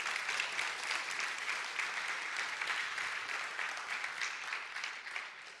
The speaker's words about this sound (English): Most congregations should not give applause to their pastor's rant, but thank you very much.